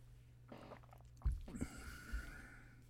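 A sip from a drink: a soft slurp and breathy intake, followed by low gulping thumps as it's swallowed, quiet with no talking.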